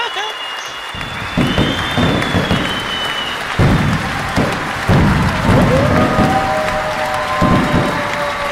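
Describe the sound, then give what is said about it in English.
A sound effect of a big crowd bursting into wild applause with loud cheering and whistles, the clapping dense and sustained throughout, rising in surges like an enthusiastic standing ovation. “Oh, I think we need, like, a standing ovation for that, please, Jingle Boy.”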